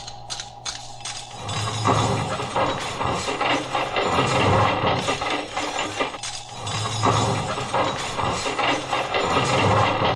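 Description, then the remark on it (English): Silverware clatters and rattles loudly inside a running garbage disposal after food is scraped off plates into it, a continuous grinding churn broken by harsh metallic clinks and scrapes, with a brief lull partway through before the racket resumes. “I just scraped everything off the plates into the disposal, and the silverware made a little noise.”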